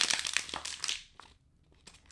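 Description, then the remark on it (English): A nearly empty plastic water bottle, holding only a teardrop of water, is crumpled up, a dense burst of crackling crinkles for about a second, then a few sparse pops and creaks as it settles. “He crumpled up a. I had a little bit of, tiny bit of water, maybe a teardrop size of water in a water bottle.”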